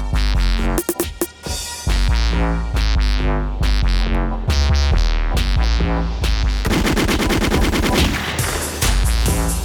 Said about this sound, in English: Better gunshots.